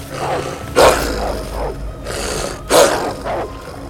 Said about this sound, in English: a hoof just deflecting the dark leaping form of a wolf, who quickly bounded away and approached again in low and growling stance.